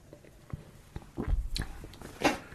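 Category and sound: food or drink, sipping beer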